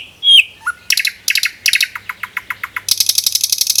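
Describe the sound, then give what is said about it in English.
A songbird sings a lively, varied phrase: a whistled note, then rapid repeated chirps that quicken into a fast trill, clear with no voices. “Like, did you know a bird's brain and a human's brain works the same way when birds and people are learning to sing?”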